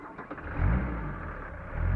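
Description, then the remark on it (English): A taxi engine rumbles, revving up in two low surges as the taxi pulls away, heading to a marina, with no voices. “I got a taxi over to the marina, walked the pier to the boat.”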